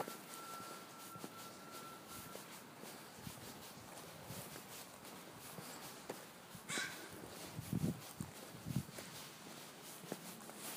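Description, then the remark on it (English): Crows caw in a few harsh, scattered bursts against a steady outdoor hiss, sounding somewhat agitated, with soft footstep-like taps and no talking. “I'm just thinking too, it could be a situation where the crows, that something has happened, and then the crows are sort of, that's why they're all riled up.”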